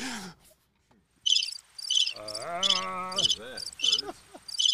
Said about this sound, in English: It's supposed to be crickets. You got me. Got him. It's what happens when you get the stock effects.